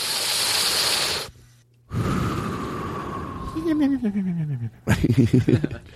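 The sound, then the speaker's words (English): A person imitates a sleeping cartoon cat: a long, loud breathy inhale, a pause, then a snoring exhale sliding into a falling whistle, ending in quick puffing breaths. “That's how a cartoon cat sleeps.”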